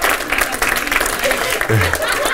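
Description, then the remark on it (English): A church audience claps in a dense, continuous burst of overlapping hand claps, fairly loud and steady, with voices mixed in underneath. “Yeah, we can hug and we can clap too.”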